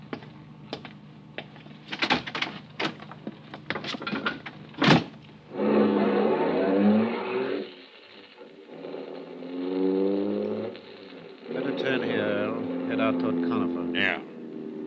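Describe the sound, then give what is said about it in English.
Several sharp clicks and thumps like a car door shutting, followed by a steady engine rumble as a car carrying five men drives up in front of the Northern Hotel, with people talking over it. “And then a car drove up.”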